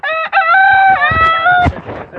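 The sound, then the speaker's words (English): A rooster crows loudly in one long, drawn-out, strongly tonal call, with chickens clucking softly and irregularly underneath and trailing off after the crow ends. “When you go to bed at night, put all the birds away, like up and away.”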